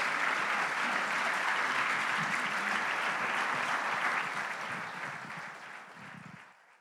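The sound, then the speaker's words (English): Sustained applause from a sizeable crowd, dense clapping at steady volume for several seconds before gradually thinning and fading out near the end. “Give her an all-round of applause.”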